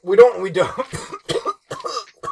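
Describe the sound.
A person coughs in a string of rough, close bursts that come in an uneven rhythm. Voiced, strained sounds run between them, with short pauses in the middle of the fit.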